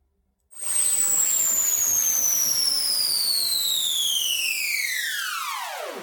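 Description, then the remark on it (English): A sci-fi electronic alarm disarming effect: a bright synthetic tone with shimmering harmonics sweeps steadily downward in pitch for about five seconds over a hissy noise bed, holding a constant loudness. “So let's just have a quick moment of silence for science fiction, sci-fi, electronic, alarm, disarming, dot wave.”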